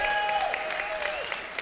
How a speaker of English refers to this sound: Men, give the ladies a big round of applause, all right?